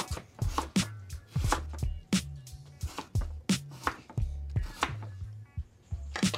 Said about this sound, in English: We're making magic out of potatoes and sugar and peanut butter. Chopping the potatoes.